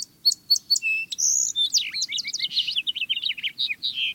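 Several birds singing at once in a garden: repeated clear whistled notes give way to a busy tangle of rapid chirps and trills, bright, with faint low background rumble and no voices.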